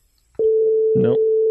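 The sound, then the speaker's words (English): A call disconnect tone as a phone call drops: one long, flat, loud beep that starts abruptly and holds steady at a single pitch to the end, with a brief voice sounding over it partway through. “That sounds like someone flatlining.”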